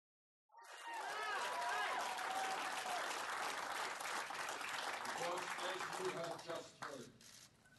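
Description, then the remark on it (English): A rally crowd breaks into loud, dense applause and cheering that holds steady for several seconds, with excited voices shouting through the clapping before it tapers off at the end. “Here's an audio postcard from the rally”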